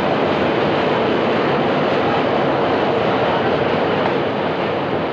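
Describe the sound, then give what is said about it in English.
A loud, steady roar of a subway train rushing by beneath a street grate, a dense rumbling wash of noise that holds constant for several seconds with no voices. “Oh, do you feel the breeze from the subway?”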